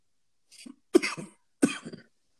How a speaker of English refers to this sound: Keep coughing. Jeez.